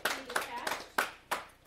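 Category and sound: human body sound, hands clapping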